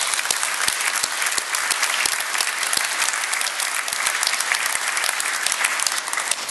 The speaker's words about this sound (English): Anybody else here from ConAgra today? They've worked very hard with us to get to where we're at, and so please give them a round of applause also.